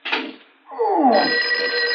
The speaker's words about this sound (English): Oh, Hey, Barney! Telephone's ringing. Ain't you gonna answer it?